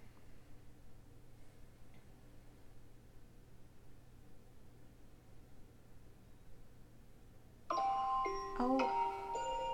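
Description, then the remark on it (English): A phone ringtone used as an alarm starts suddenly near the end: a bright, melodic run of electronic beeping tones stepping up and down in pitch over a steady low hum. “Was that a phone call? Yeah. Oh. I know, it sounds like an alarm.”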